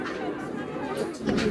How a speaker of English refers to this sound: And you could hear it when he was getting out of the car, how important that was to these people. Having made his way by car from RAF Northolt, the King was met by cheering crowds as he stepped out and shook hands with well-wishers.